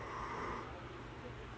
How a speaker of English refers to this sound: Yeah, we're just snoring now too.